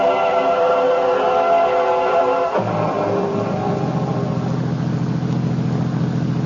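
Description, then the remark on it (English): A limousine, sent to pick someone up at Dulles Airport, engine purring steadily along the road west toward Winchester, a smooth humming drone with layered tones that drops in pitch partway through and settles into a lower, even rumble. “I was still fuming, even after the limousine with Stokelys had sent to pick me up at Dulles Airport was purring along the road west toward Winchester.”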